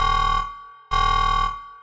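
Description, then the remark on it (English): A harsh, buzzing alarm sounding in a house blares in two long bursts with a brief gap between, loud, its steady tone ringing with strong harmonics and no voices present. “And as soon as you get those words out of your mouth, bright red lights start flashing in the room and an alarm starts sounding in the house.”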